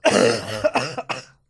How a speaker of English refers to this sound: Shall I switch your mic on so you don't cough over everything?